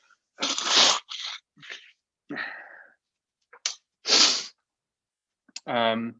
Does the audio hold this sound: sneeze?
yes